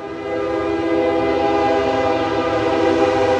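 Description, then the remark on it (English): A train horn blares in a sustained, steady blast over the low rumble of a train passing through the town of Iuka, Mississippi, loud, with no voices present. “Other than the train passing through, the town is pretty quiet.”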